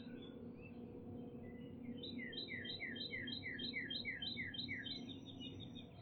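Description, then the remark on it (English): A male northern cardinal sings a quick run of about ten clear, slurred whistles in a steady rhythm over a constant low background rumble. “Oh, I hear a cardinal also. Yep. Male cardinal.”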